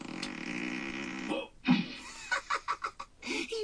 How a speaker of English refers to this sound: That wasn't a fart. That was just air leaving my butt. Which is a fart.